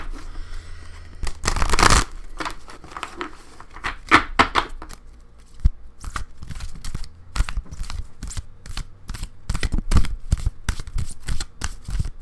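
Cards from the Sacred Hags Oracle deck by Danielle Dolsky are shuffled. It starts with a loud riffle burst, then a run of quick crisp slaps and flicks in a steady rhythm as the deck is cut and shuffled repeatedly, with no talking.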